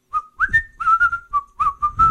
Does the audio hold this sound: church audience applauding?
no